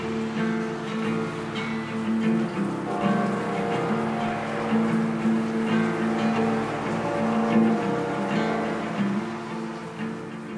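A rain and train whistle sound effect: steady rain hisses throughout while a long, sustained train whistle tone drones over it, holding and shifting slightly in pitch; no voices are heard.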